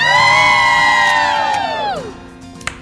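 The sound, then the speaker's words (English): A loud crowd gathered on a plaza in the morning cheers and whoops together outdoors, a sustained high-pitched roar that swells for about two seconds and then trails off, leaving scattered background noise. “Great crowd out there on the plaza.”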